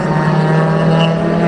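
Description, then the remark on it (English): A loud, steady drone of race cars in the T4 group, led by Jeremy Butts, Chris Windsor and Mark Cephalo, coming through turns 17, 18 and 19, with a strong low buzzing pitch and bright overtones, holding even throughout the short stretch with no voices. “All right, as they come by, it's still Butts, Windsor, and Cephalo as they come through turns number 17, now into 18 and 19.”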